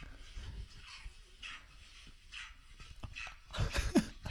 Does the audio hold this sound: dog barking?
yes